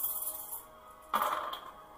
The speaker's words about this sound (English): Okay, now I'll roll all my dice.